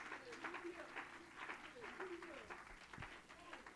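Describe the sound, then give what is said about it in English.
An audience claps hands steadily in praise, a dense run of claps at moderate volume, with voices talking and calling out underneath. “Somebody clap your hands and give him praise.”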